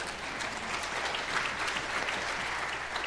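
A room full of people claps steadily, a dense wash of applause that holds at an even, moderate level for a few seconds with no one talking over it.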